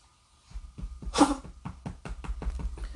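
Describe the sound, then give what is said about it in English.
A dog on a chair beside the speaker makes a nasty hacking noise: a loud rough burst followed by a rapid series of shorter, harsh gagging pulses, with no talking. “As my dog now makes a nasty noise over here beside me on the chair.”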